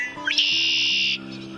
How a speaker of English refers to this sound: But for now, male red-winged blackbirds are the stars of the marsh.